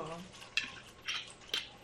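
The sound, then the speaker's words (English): Unfiltered sake, served cold and creamy and milky in look, splashes into cups in three short bursts of bright, hissy pouring, each with a faint ceramic clink, after a brief murmur of voice at the start. “All right, cups are out. Pouring the sake now.”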